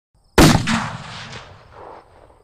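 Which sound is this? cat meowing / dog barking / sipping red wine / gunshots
gunshots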